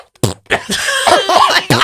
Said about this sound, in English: Excuse me. Excuse me. I had another coughing. Oh, these allergies.